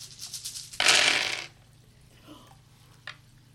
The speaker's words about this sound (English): So you're rolling what? 23 dice? Something like that? Yes, 23.